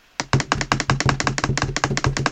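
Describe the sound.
A quick drum roll tapped out on a table: about two seconds of rapid, steady knocks, with no talking.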